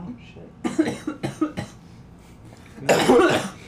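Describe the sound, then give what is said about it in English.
Several sharp coughs from a group of people in quick bursts, followed by a longer, harsher fit of coughing near the end, with voices mixed in around them. “This is really the first 5 minutes is everybody just ever. Coughing.”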